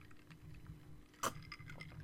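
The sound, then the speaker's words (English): A single short sip of rum from a glass, with a faint clink, breaks a low hum; no one speaks. “As I sip from one of the last glasses I have of rum left, because it has been a hell of a night.”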